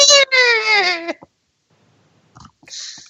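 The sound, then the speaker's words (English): A dog, Brew, alone in a recliner, lets out a loud, drawn-out whine lasting about a second, its high pitch sagging slightly, followed by a pause and a few short, softer whimpering noises. “Sobbing in the recliner alone, I feel Brew's pain.”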